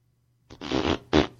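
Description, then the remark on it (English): A fart sound effect played through an Alexa smart speaker on voice request: a long, rumbling blurt followed by a short, sharp second burst, fairly loud, with no talking. “Alexa, ask for a fart.”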